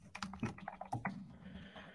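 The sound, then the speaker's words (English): Quick, uneven clatter of keys on a computer keyboard as tweets are typed, a burst of soft clicks and taps at a fairly low volume, with no voices. “Let me pre-type my tweets because I didn't realize scheduled tweets were a thing.”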